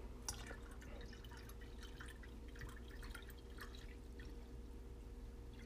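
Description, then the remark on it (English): Water trickles and splashes into a glass of pink lemonade in a steady, fairly quiet stream of small bubbly drips, over a constant low hum, with no one speaking. “I put water in my pink lemonade.”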